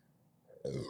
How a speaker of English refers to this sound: Hey, when you review beer, you just got to expect the burps, man.